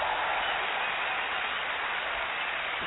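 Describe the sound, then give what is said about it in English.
A steady burst of applause, dense and continuous, like a crowd clapping all at once. It stays at an even, fairly loud level for the full few seconds, with no voices. “Give yourself a big round of applause for just being here.”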